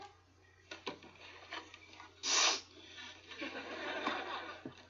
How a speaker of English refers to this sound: don't you have anything better to do than sniffle in my ear while I'm working?